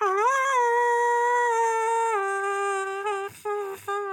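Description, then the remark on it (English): A voice holds a long, warbling sung note meant to mimic singing underwater, the pitch wobbling slightly and dropping a step midway, then breaking off twice in short gaps near the end. “I'm just trying to make it sound like I was underwater.”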